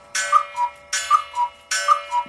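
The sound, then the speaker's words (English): A clock chimes noon in a steady repeating pattern, each strike a quick mechanical whir followed by two bright falling notes, three rounds in a row, clear with no voices. “It's noon, everybody. We're it's recording this. O'clock.”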